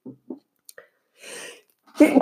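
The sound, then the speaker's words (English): A loud sneeze bursts out after a few small vocal catches and a breathy, hissing intake, with a second sharp sneeze starting right at the end. “Of course, when I decide to podcast, I have a sneezing fit.”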